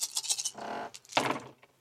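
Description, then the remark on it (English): Dice clatter in a quick series of sharp clicks, then a short rolling rattle, followed by a second burst of tumbling clacks that fades out. No one speaks. “And here goes Jason's dice.”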